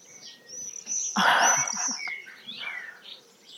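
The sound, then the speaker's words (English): Swifts calling over a garden: a run of shrill, high-pitched screaming trills, several overlapping and sweeping in pitch, with one loud harsh burst about a third of the way through. “Swift.”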